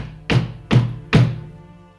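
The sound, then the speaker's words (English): Three heavy knocks on a wooden door, evenly spaced about half a second apart, each a solid low thud with a short resonant tail, with no voices. “hear a knocking on the door, kind of a.”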